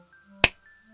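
human body sound, a single clap

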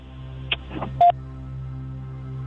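signal or alarm, telephone call dialing out

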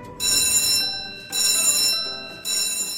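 signal or alarm, alarm bell ringing

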